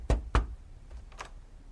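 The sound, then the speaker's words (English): Two firm knuckle raps on a door in quick succession, solid, followed by a faint softer tap. “Isley, from technical support, rapped on the door to remind him about the 10 o'clock meeting”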